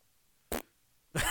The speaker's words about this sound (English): As last Monday Night Football, he let one rip. You know what? Tooted on the broadcast.